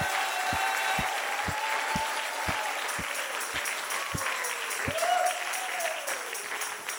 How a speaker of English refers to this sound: Come on, why don't everybody clap your hands? Why don't everybody get involved?